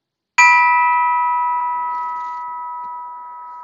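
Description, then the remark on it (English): A bell is struck once to begin a breathing meditation practice, and its clear, bright tone rings on, sustaining and fading very slowly with no one speaking. “So I have a bell that we'll start with.”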